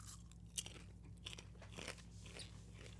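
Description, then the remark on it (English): Crunchy popcorn being chewed, with sharp irregular crunches and one louder crack early on, over a low steady hum. “If you're wondering why I'm eating popcorn, because it's a movie podcast, what else would I be eating?”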